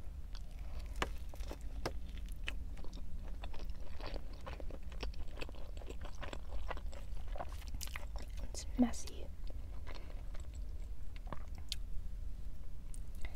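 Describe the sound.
Soft, wet chewing and biting of food inside a car during a soft-spoken mukbang, with irregular crunchy clicks and squishy mouth sounds repeating throughout, over a steady low rumble and faint whispered speech.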